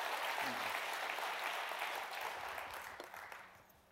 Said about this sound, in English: Amen, church. Give him one more hand clap of praise as you're seated.